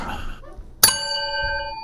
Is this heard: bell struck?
yes